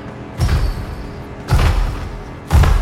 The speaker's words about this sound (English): You hear loud footsteps of the Etten.